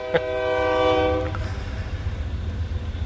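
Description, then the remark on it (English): A loud train horn blares in one sustained, chord-like blast lasting about a second, then cuts off, leaving the low rumble of a passing train rolling on underneath. “And there's a train right there. Like being... Right. Like the horn on the train.”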